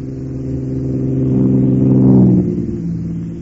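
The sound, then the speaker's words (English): A race car, number 13, revs its engine as it approaches, swelling to a loud peak as it passes, then fading slightly as it moves away. No one speaks. “Number 12, Nick. Yep. And here comes 13.”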